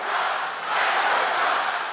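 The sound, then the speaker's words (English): A large crowd at the Save America rally on January 6th shouts and chants "Fight for Trump" together, a dense, loud wall of many voices that holds steady for two seconds with only a brief dip early on. “And this is what the crowd was chanting that day.”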